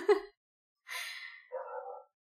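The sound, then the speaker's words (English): A dog named Maverick barks in three short, rough bursts spaced apart, fairly faint, with no one talking over it. “Maverick is still barking somehow.”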